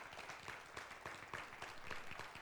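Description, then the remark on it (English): An audience breaks into a sustained round of applause for its head usher, dense overlapping clapping that stays steady and fairly loud for the whole stretch, with no voices standing out above it. “Give Scotty a big round of applause.”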